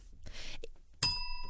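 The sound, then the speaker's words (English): A bell rings out once with a sudden, loud strike, its bright metallic tone sustaining steadily afterward, preceded by a brief soft rustle. “There's a literal illustration of what I was saying.”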